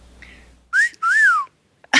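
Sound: whistling through teeth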